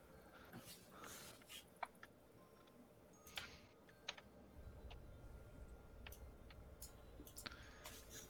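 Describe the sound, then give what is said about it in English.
Rapid, uneven clattering of computer keyboard keys, with sharper clicks now and then over a low steady hum; no one speaks. “Sorry, fanning with my keyboard.”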